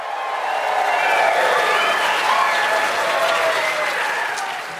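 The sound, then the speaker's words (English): A large audience at the 2018 Wrap Party at the Logan Center for the Arts on the South Side of Chicago bursts into loud, sustained applause, dense clapping with scattered whoops and cheers rising over it, holding steady for several seconds before starting to ease off. “The raucous applause for my picks”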